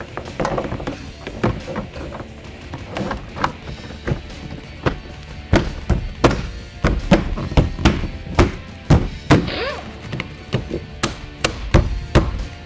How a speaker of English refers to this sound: And finally, the rear door panel goes back on.